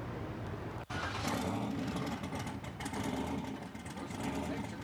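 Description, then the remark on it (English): A turbocharged car engine, with turbos on the front and back end of induction, runs steadily with a loud, rumbling exhaust through its mufflers that holds a continuous throaty drone, broken by one brief dip near the start. Indistinct voices seem mixed into the noise. “That's the mufflers. That's the exhaust.”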